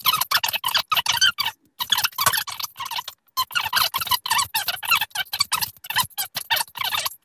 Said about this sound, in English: So I'm just going to put some oil on the work surface here so that the dough doesn't stick. And we're going to turn it out onto the work surface. And what I have to do now is what's called knock it back. So I get all the air out again.